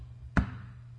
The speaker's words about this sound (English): And you knock until the Bible says, until the door is opened.